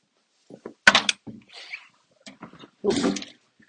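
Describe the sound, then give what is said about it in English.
The front door of a house being opened: a sharp thunk of the latch, then creaks and rattling, followed by a louder scrape and bump as the door swings, with no talking. “All right, look, we're back in the house. I'm coming the front door.”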